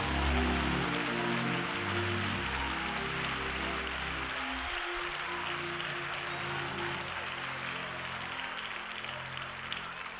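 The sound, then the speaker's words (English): Sustained applause from an audience for a 90-year-old woman, a dense, steady wash of clapping lasting the full stretch, with a low sustained organ or keyboard tone running underneath. “Come on, give her another rousing applause.”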